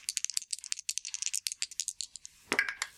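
Dice being rolled for a sanity roll rattle in a rapid string of sharp, bright clicks for about two seconds, then a short pause before a final louder clattering burst as they settle. No one speaks.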